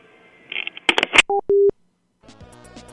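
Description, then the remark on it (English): A few clattering clicks, then two short electronic telephone tones, the second a steady held beep, as a call cuts off. A buzzy electronic drone follows after a brief silence. “Oh, you made a phone call.”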